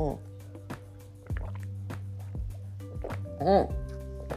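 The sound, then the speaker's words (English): A quick slurping sip of tea, with small wet clicks and swallowing sounds over a steady low hum, ending in a short voiced exhale. “So now my next point that I want to go on, oh my God, hold on, let me take another sip of this tea, because I'm like talking, I got cotton mouth like a motherfucker.”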